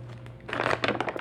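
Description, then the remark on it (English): Paper notes rustle and crinkle in a quick series of irregular, crisp bursts after a quieter start, with a steady low hum underneath and no voices. “Yeah, that's what you hear, the paper rustling.”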